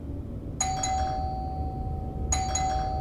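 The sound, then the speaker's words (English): A doorbell rings twice in quick succession, each press giving a bright double chime whose tone lingers, echoing through a cramped corridor of a rented place in a working-class neighborhood of Hong Kong, over a steady low background rumble. “The doorbell echoed relentlessly through the cramped corridor.”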